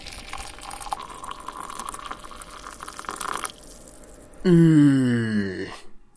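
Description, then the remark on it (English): Bollinger champagne pours into a glass for about three seconds, a steady fizzy hiss whose tone rises as the glass fills, followed by a short, low, falling voiced hum. “Okay, I have a glass of Bollinger.”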